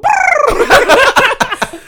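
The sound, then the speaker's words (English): A person vocally imitates dove cooing with a warbling, wavering run of throaty pulses that rise and fall in pitch, fairly loud, lasting about two seconds. “Like, oh, they brought the doves?”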